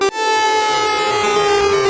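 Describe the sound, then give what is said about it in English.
A loud, sustained synth lead in a Dorian scale, crushed by bit reduction and automated downsampling, its steady tone buried in gritty, buzzing digital aliasing that gives a harsh 8-bit video-game character, held alone for two seconds. “And to add more actually to that 8-bit effect, I actually have a bit reduction here, which is downsampling the lead on certain sections of the song.”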